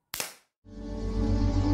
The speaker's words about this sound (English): so I guess I'm gonna go when I'm editing this, the intro is gonna play now after this clap.